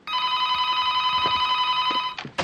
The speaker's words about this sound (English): Yeah, the phone rings, and they both sprint they both for it. Attack it.